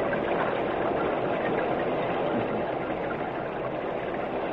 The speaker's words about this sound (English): It's starting to rain. I hope they find shelter somewhere.